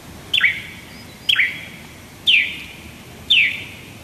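A yellow-faced honeyeater in North Turramurra, a bushy area of northern Sydney, gives four sharp, high-pitched picking calls, evenly spaced about a second apart, each a quick descending chip with a brief ringing tail, over quiet background with no talking.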